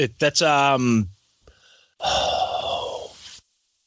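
A brief vocal sound, then a loud, close rush of air blasting into the microphone for about a second and a half, like a heavy, breathy exhale.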